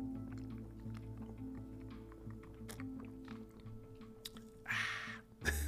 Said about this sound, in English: So usually what happens is, well, I gotta take a sip, it's just sitting here.